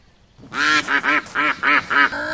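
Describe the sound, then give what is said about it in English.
A failed rooster crow that comes out as loud, nasal, quack-like squawks: one longer burst followed by about five quick, evenly spaced honks, then a trailing rasp, with no talking. “He can't even make the cock-a-doodle-doo sound.”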